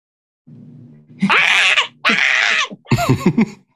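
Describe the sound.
A person mimics the loud morning screeching of a 23-year-old pet bird: a low hum, then two long harsh shrieks followed by a burst of choppy squawks, loud.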